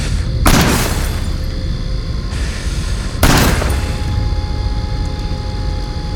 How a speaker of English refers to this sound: King swiftly shuffles behind the car, pops up, aiming the barrels through the back windshield to the driver's side seat. Without hesitation, he shoots twice.